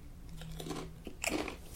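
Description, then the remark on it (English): Potato chips from a 63 gram bag being crunched: a couple of crisp, crackly bites with brittle snapping bursts and chewing in between, fairly quiet, with no talking. “Chip cheers.”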